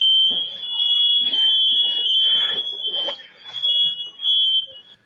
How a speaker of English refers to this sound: A lot of confusion, smoke alarms going off, and for good reason.